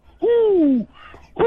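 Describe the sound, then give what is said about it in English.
A person imitates an owl with a single drawn-out, loud hoot that slowly falls in pitch, followed by a brief pause and the start of another hoot. “Who? I'm the angry owl.”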